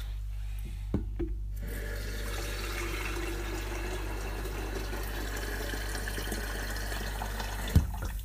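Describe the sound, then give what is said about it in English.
Just-boiled water pours steadily from a kettle into a washing-up sink in a continuous splashing stream that runs for several seconds, with a couple of brief knocks near the start and end. “So, yeah, I'm going to add more water. It's like a YouTube that how to wash up properly, guys.”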